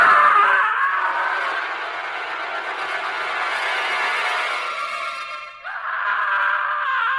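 man screaming

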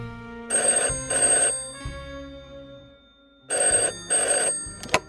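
telephone ringing

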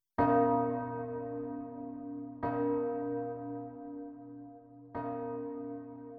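tolling church bell

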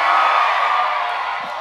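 audience screaming and cheering

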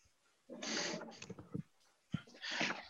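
dog barking

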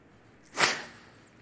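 sniffle

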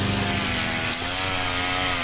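lawn mower engine running

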